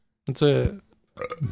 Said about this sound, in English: I'm burping up a storm, bro. I can't even control myself.